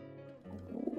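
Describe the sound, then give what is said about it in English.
A pigeon, met by chance under a bush in Amsterdam, coos in a low, throaty burbling murmur that rises slightly in strength toward the end of the brief moment, with no one speaking. “This is the last story in this first Here in Holland podcast, a chance encounter with a pigeon.”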